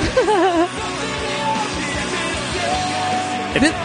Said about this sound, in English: Okay, this is shout singing. Yep. This is probably my favorite song on this album. This is the most tolerable shouting I've heard.